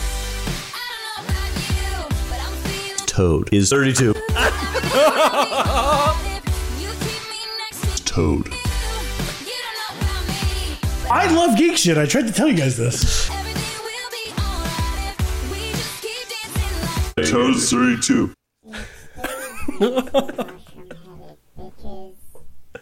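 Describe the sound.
A listener-made theme jingle for a booze news segment, with a voice singing and speaking over a dense, loud musical backing that runs steadily for over twenty seconds, dropping out briefly near the end before a short final tag.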